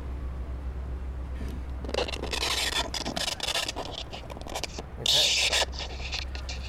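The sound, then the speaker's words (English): Rough, rasping scrapes and rubs come in uneven bursts as a hand slides along a hydrophone cable while lowering it into the water, over a steady low hum, with a brighter, harsher scrape near the end. “So yeah, and that's just the sound of my hand on the cable as I lower it down.”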